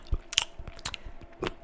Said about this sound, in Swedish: Smackande. Ett av de värsta sakerna hon vet är när någon tuggar vattnet som hen dricker.